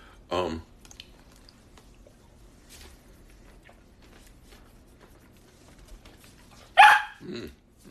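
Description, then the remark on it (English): A dog barks twice, loud, once at the start and again near the end, with a long quiet stretch of faint background noise in between. “You be a nice dog.”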